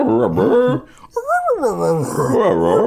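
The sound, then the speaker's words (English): A voice imitates endearing dog noises, soft and whiny, cooing and whimpering in wavering rising and falling pitches, with a brief pause before a second longer run of warbling sounds. “I approached a dog I naively thought had an owner, put my hand out and made endearing dog noises.”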